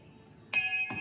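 A small bell is struck twice in quick succession, each strike a bright, clear ring with a lingering metallic tone, with no talking over it.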